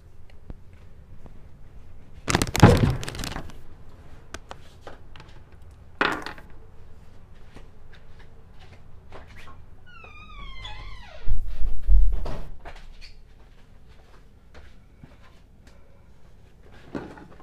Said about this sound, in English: Let me just close the door.